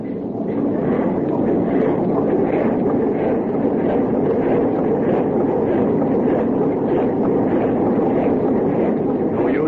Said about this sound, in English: Well, we struck that ice pack head on. Lucky for us, that 19-inch planking of the floe would have stove us in.